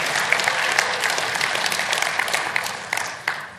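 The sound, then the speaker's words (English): A large audience cheers and applauds steadily for the 2009 planting of Lavinia in Price Hill, a dense wash of many hands clapping at once that holds loud and full throughout, with a few sharper claps popping out near the end. “Yeah, let's cheer about that.”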